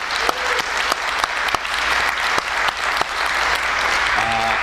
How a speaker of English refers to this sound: I really would be remiss if we could not give a huge round of applause for Kay Kelly in her job in the Franklin Cultural Council for putting this event together today.